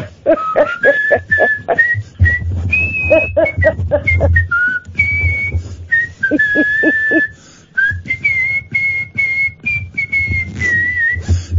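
A person whistles the French national anthem, a lively, march-like tune, the melody carried in clear sustained and stepping notes, with faint background rustling and low rumble beneath.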